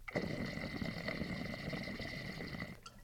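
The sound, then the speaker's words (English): Water bubbles through a standard, single-diffuser bong in a steady, choppy gurgle, a dense chugging rumble that runs for under three seconds before cutting off. No one speaks over it. “You can hear that standard has a little bit more of like a chop and a chug to it, where the double diffuse is just a purr.”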